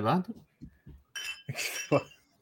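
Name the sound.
glasses clinking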